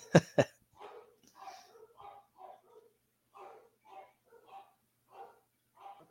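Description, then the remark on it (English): Dogs bark, starting with two sharp, loud barks close together, then a steady run of softer, shorter barks at a regular pace for several seconds. “So my dogs are barking.”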